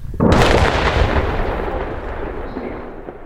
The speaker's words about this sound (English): Another blast follows.